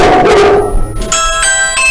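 A dog barks loudly and excitedly in a short burst as somebody comes to the house, followed by sustained high, ringing tones that carry through to the end.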